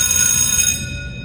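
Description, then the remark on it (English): A time-out bell sound effect, triggered by mistake, rings loudly with a bright, steady metallic tone and shimmering high overtones. The ringing cuts off after under a second, leaving a low rumble. “Satan pushed that bell.”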